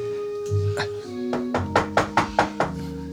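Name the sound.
knocking on a door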